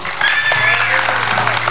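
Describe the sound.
A room full of people applauds together, a dense, steady patter of clapping hands that fills the space for a couple of seconds, with faint voices mixed beneath it.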